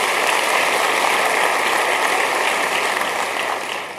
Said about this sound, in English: Let's give a hand clap to Jesus.